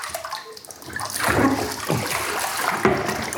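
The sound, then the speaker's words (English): Water is poured and splashes into a bath while a child is being bathed, with a few uneven pours and sloshes over a couple of seconds and a steady watery wash in between. “It's okay, it's just a bit of water.”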